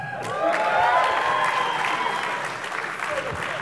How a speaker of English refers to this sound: Guys, you clap now, this is how the cuddle circle starts.